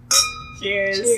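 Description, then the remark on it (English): A single bright clink of glasses touching in a toast, ringing briefly with a high, sustained tone, followed by a voice speaking. “Cheers.”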